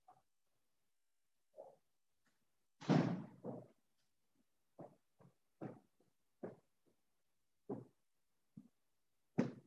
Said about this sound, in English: Sorry, I got to open the door over here. One second.